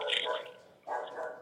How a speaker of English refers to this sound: Got the dogs all riled up.